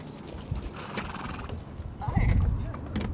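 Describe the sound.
Horses shuffle about, their hooves clip-clopping in an uneven, irregular pattern over a low rumbling background, with faint murmuring voices mixed in. A windy late-April day with dust blowing across an arena on the San Carlos Reservation, several miles east of Globe, Arizona; young San Carlos Apache men gathered around the horses and a trailer workshop.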